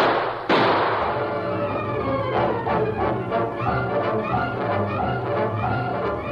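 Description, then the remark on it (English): Gunshots fired inside a bank: a loud, sharp gunshot bursts out and rings away, followed by a quicker series of fainter cracking shots with no voices. “The sound of the shots reached Tonto before he could cross the crowded street.”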